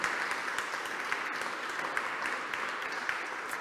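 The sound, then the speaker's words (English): Steady applause from a church audience for the team and volunteers, a dense crackle of many hands clapping at an even, sustained level throughout, with no voices rising above it. “A well-deserved round of applause for them.”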